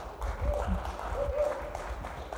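A crowd applauds in a steady, dense wash of clapping that holds for a couple of seconds, moderately loud, with a few voices calling out over it.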